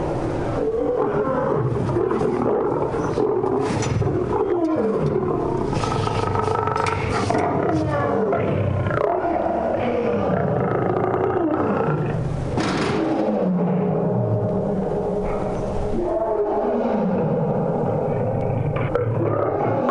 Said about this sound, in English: When they're angry or agitated, you can hear their roars echo throughout the zoo.